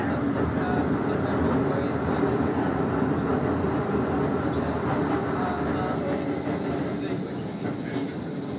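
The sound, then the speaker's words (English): Steady rumble from inside moving city tram number 9, with constant wheel and track noise, light rattling and faint high squeals above the low drone throughout. “So we've decided to stay on tram number 9 rather than get off at Wenceslas Square”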